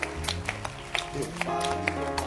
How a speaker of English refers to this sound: Amen. Amen. Clap your hands.